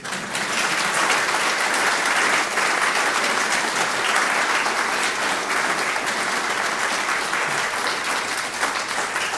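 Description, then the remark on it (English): An audience claps steadily as a bass player joins the rhythm section on stage, a dense, sustained wash of applause holding at an even, fairly loud level for the whole stretch without any voices rising above it. “Feel free to applaud.”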